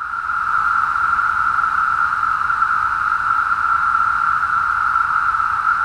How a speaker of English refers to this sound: Although there are many different species of cicadas, like I mentioned, each species has a different, for lack of a better term, song. We're putting song in quotation marks because they don't make that sound with vocal cords